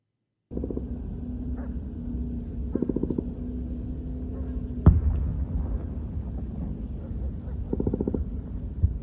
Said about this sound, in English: You can hear there all that gunfire and also the strikes that appear to be called in to this specific area. Another one right there. The Israelis are clearly engaged with militants inside Gaza in the northern part of the Strip.